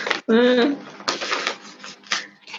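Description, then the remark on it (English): Scratchy bursts of a pen writing names on paper in short, uneven strokes, after a brief voiced sound at the start. “All right, I'm going to write everyone's name down.”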